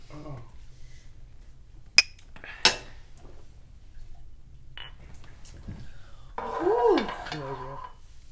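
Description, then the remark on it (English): Glasses clink together in a toast, two sharp ringing taps about half a second apart, followed by quiet background murmur and a brief voice. “Okay, cheers. Cheers.”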